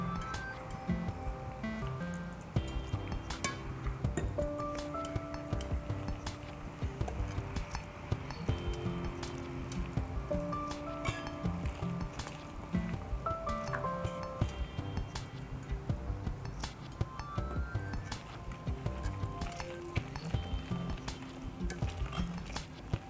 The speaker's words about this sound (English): Then I'm going to put 2 teaspoons of baking powder, and lastly I'm going to make the batter with 1 1/4 cup of cold water.